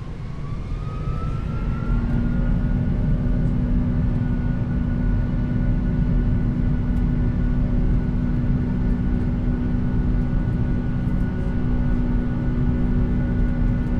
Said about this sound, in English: Take off over the beach, over the sea. Now turning steeply.